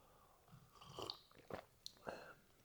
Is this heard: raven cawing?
no